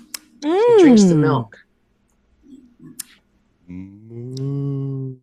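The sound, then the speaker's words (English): A human voice imitates two distant cow moos outside: a wavering, rising-and-falling moo, a pause with faint clicks, then a steadier, lower drawn-out moo. Both are fairly loud and clear. “We hear the distant moos outside”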